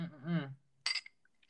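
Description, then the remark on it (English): A voice speaks briefly, then a bright, sharp clink of glasses touching in a toast rings out, followed by a couple of faint lighter taps. “I think that deserves a little toast. Cheers.”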